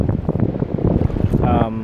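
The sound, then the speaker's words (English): Steady wind and the low roar of ocean waves fill a cove at Agate Beach in Newport, just around from Newport's lighthouse, buffeting the microphone, while indistinct voices murmur underneath and one voice briefly rises near the end. “I don't know what it is, but we're at some like cove area where the ocean comes in, and just around that cove is where the lighthouse is, Newport's lighthouse.”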